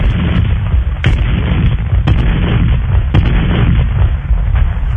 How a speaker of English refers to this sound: For if I were the gunner aboard the Man of War, we would hunt down all the Spaniards and they'd hear my cannons roar.